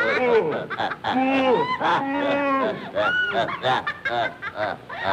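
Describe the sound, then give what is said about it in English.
A goose honks over and over in a rapid, jumbled series of loud nasal calls, nearly continuous for several seconds, with a chattering, almost laughing quality. “The old goose has cooked this guy.”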